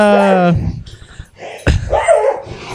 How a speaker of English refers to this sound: Oh, my God. This is awesome. Your little dog beat your big dog out for the toy that they're playing with. Yeah, he does it on purpose just so he can try and steal it from him again.